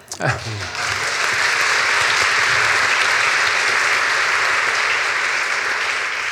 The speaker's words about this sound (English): this marks a fairly astounding achievement. This is the 16th novel that Ben Elton has written, so I'm sure that warrants applause in its own right